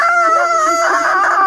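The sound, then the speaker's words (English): A person's voice imitates a monster's roar: one loud, sustained, strained cry with a wavering, somewhat high pitch, lasting about a second and a half with no other talk. “Okay, it starts roaring it.”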